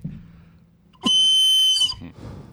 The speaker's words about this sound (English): That's my whistle of disapproval.